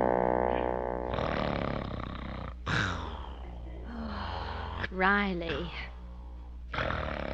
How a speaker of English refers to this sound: it's 4 o'clock in the morning. I haven't slept all night. Please stop snoring.